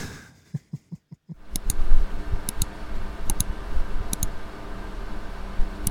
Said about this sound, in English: It's the guy typing on the keyboard and being like, huh.